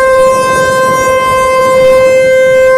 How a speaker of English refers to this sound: A New Jersey cop seen on video last month slapping a man dressed in a bunny costume for blowing an air horn inside police headquarters was charged with assault.